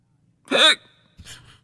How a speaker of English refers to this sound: Sorry. It's bad. So, it's a pain. What do you do for the hiccups? Stand on your head and blow bubbles. Sip on ice cold water. Bite on a lemon or taste vinegar. Hold your breath. None of them work.